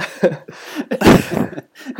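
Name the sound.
nose blowing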